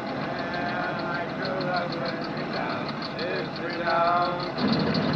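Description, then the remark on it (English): A car engine, boiling over on a rough road in Los Angeles County, runs steadily throughout, a continuous rumble with a faint rhythmic ticking on top, while indistinct voices murmur over the drone. “You're going to ruin this car, Mrs.”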